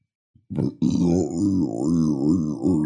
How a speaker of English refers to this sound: That was my long burp. My bad.